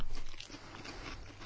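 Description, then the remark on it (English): Crisp crunching of potato chips being bitten and chewed during a taste test comparing American and Chinese potato chips, a dense run of brittle crackles filling the short moment with no talking. “Well, people love when we do this because we chew into the fucking...”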